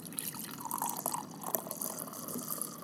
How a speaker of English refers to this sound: Let's pour it into the mic so we can listen to this.